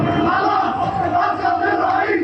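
A huge crowd in Tahrir Square, Cairo, Egypt, roars and chants outdoors, celebrating as news spreads that the ruler has gone after 30 years; a dense, continuous wall of voices cheering together with no pauses, loud and sustained throughout.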